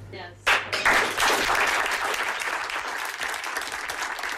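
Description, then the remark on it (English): A crowd bursts into a standing ovation for a choir's leader as he wraps up, many hands clapping in a dense, steady roar that swells quickly and holds strong throughout, with faint cheering mixed in. “The crowd gives him, their leader, a standing ovation as he wraps up. And he was crying and the audience was clapping.”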